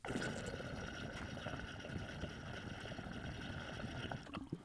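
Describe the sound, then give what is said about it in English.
Steady, dense bubbling of water churning through a glass water pipe, a continuous gurgling rush with no talking, easing off near the end. “This feels like a hardy big piece, but the way it moves water is just like it's awesome.”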